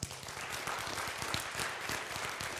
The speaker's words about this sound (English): Ford or Chevy? Okay. Clap if you say Ford.